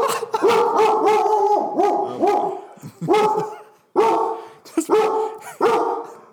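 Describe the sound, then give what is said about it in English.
A huge dog on a couch barks loudly at a neighbor in a rapid, insistent string of a dozen or so barks, with a couple of brief pauses between bursts and no talking. “And then the huge dog was barking at the neighbor then kid.”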